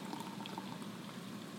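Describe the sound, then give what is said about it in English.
A full can of grapefruit Spindrift is cracked open and poured out: a steady stream of liquid with a soft fizzing, bubbling hiss that continues evenly throughout, fairly quiet, with no voices. “Now, if I do this, crack this bad boy open, pour it out.”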